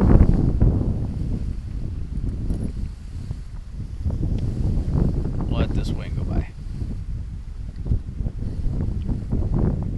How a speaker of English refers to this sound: let this gust of wind go by.